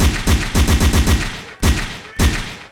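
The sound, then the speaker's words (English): A gunshot sound effect: a rapid burst of about six loud gunshots in quick succession, then two more heavy, booming shots spaced apart, each ringing out briefly with a broad, sharp crack and low-end thump. “Somebody bust a shot right now, bust a shot, gimme!”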